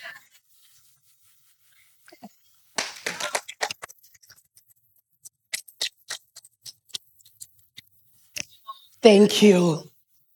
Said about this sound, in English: He who observes the clouds. Yeah. That's a very good place to clap.